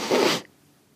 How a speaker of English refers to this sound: Sorry. Why did you stick your nose right in the mic and sniff?